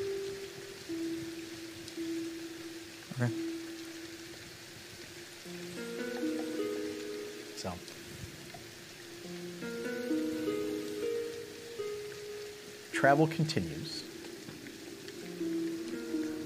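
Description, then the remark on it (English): Steady rain hisses throughout as a constant background wash, with soft melodic music playing over it and a man briefly speaking near the start. “as does the rain.”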